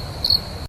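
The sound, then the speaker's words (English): A short burst of cricket chirping played as a sound effect after a joke: a steady high-pitched trill that swells briefly in the middle before cutting off abruptly, with no voices present. “anyway, I can't do crickets after a joke that involves the crickets.”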